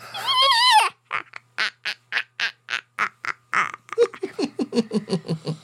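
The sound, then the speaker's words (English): A voice imitates a witch's cackle: a high, wavering shriek, then a long run of quick, rhythmic staccato 'heh' bursts that drop lower and speed up at the end. Loud. “Oh, yeah, I can do a witch laugh.”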